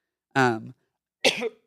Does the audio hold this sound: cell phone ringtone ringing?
no